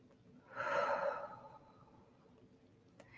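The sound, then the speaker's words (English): A deep breath, inhaled through the nose, held for a count of three and gently exhaled through the mouth: one soft, airy rush that swells quickly, then fades away into quiet. No one speaks. “Inhale through the nose, hold for 1, 2, 3, and gently exhale through the mouth.”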